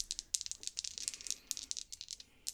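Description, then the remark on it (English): Dice rattle and clatter in a rapid, irregular string of sharp, bright clicks, fairly quiet throughout, with no voices. “I just rolled my number twice.”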